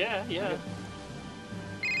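A phone rings with an incoming call, a bright, warbling electronic tone in two quick bursts, then goes quiet before a steadier ring tone starts again at the end, with low murmuring underneath.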